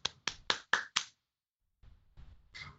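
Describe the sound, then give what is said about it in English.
Five quick, sharp hand claps in a steady rhythm, followed by a pause and then soft, low murmuring sounds. “I will simply applaud you.”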